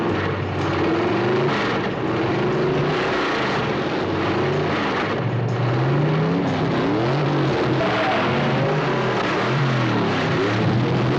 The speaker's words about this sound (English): the engines are revving yes. up and the tires are screeching as they take off down the road